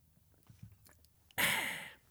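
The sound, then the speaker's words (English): A loud slurping sip of coffee lasting under a second, preceded by faint mouth and swallowing noises, with no one talking. “Pause for a sip of coffee.”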